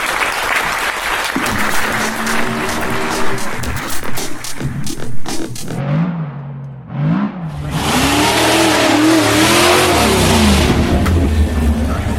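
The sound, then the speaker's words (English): Applause fades out, then a late 60s Plymouth dragster engine at a race track revs loudly, its pitch sweeping up and down in a few bursts before holding a rough, roaring drone. “From the hushed tones of Lewis Hamilton, we return to the track action with a dragster, I think it's sort of a late 60s Plymouth that was, which took about 3 inches to get the front wheel off the ground.”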